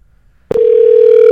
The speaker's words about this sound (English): And it's ringing. It's ringing.